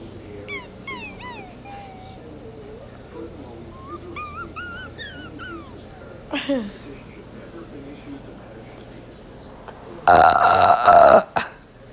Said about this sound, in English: The belch.